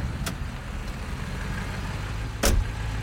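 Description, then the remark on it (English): Steady low rumble of a car engine while driving, with continuous road noise and a couple of brief louder bumps or clicks, heard from inside the vehicle. No talking. “He climbed into my car and I drove us to the house.”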